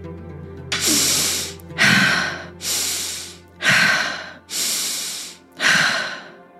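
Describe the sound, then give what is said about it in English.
Deep, airy breaths drawn in and pushed out during guided breathwork, six in a row at a slow, steady pace, with a faint low hum underneath and no talking. “Breathing in compassion for yourself, knowing that how you have arrived to the things you've arrived to, your beliefs, your feelings, you've arrived in a way that were beyond your control.”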